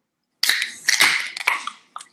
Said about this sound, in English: Let's go ahead and crack our cans and let's do it. Say cheers. All right, let's do it.